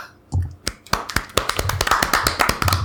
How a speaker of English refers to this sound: Discord is not picking up those claps, yeah. But our mics are.